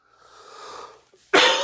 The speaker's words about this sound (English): So, guys, the coughing has started.